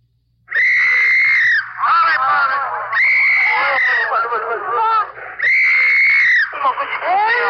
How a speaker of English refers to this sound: Your ear is tuned to Korea and the fall of a city, to the dissonant sounds of an MP's whistle and sobbing infants. as heavy trucks and tanks thunder across a bridge going south out of Seoul.